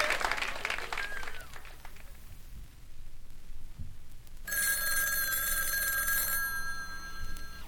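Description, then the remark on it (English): Applause-like clattering fades into quiet, then a loud telephone bell rings in a single sustained burst of about two seconds before cutting off. “I have an emergency call for you.”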